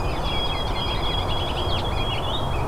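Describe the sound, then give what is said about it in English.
A white-throated sparrow's clear whistled song rises over a steady, loud rumbling background, with other high chirps and trills from several birds mixed in throughout. “So the really melodic one is the white-throated sparrow.”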